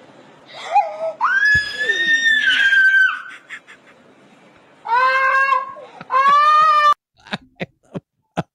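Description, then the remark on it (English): A woman who has squeezed lime juice directly into her eye lets out a long, high, wavering squeal, then two shorter shrill squeals in quick succession, followed by a few sharp little gasping bursts. No words are spoken. “She squealed.”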